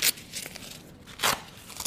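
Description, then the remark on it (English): Velcro on a belt unit, like a weightlifting belt, being pressed shut around the tummy as it is put on: two short, bright crackling rasps about a second apart, with softer scratchy rustles between them and no talking. “Okay, I'm putting on a belt unit here. Yep. A bit like a weightlifting belt and a bit of Velcro around there for the tummy tuck.”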